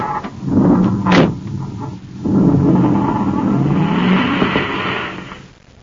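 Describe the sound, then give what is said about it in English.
A car door thuds shut, then the engine of the commander's surface car starts up and roars as it pulls away, the low rumble rising and holding before fading out at the end. No one speaks. “A few moments after Duncan and Savage roar away in the commander's surface car”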